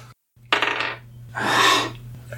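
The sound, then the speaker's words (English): A die taken out of a bag is rolled for an attack in a tabletop game, clattering and rolling across a hard tabletop in two short bursts of rattling, with a low steady hum underneath and no one talking. “I got this die out of the bag because the other dice weren't cutting it.”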